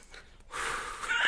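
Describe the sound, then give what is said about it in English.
A person imitates exaggerated in-through-the-nose, out-through-the-mouth breathing: a short, soft intake followed by a long, loud, breathy exhale that rushes out and swells toward the end. “Yeah, like when you're running, yeah, you're definitely supposed to in nose.”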